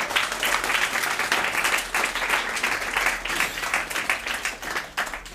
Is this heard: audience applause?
yes